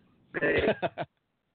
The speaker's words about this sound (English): but oh, I shouldn't have coughed, that was so sorry.